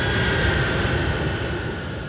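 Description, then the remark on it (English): An airplane passes with a loud, steady roaring rumble of engine noise that stays even throughout and eases off slightly toward the end. No one speaks. “It came by plane.”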